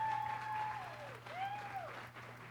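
An audience claps together in sustained, dense applause for the speaker's wife, steady and fairly loud with a faint tonal hum and sliding organ-like notes underneath.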